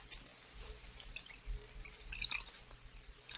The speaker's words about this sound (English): You'll have to pour the wine yourself, Harvey. All right, I will.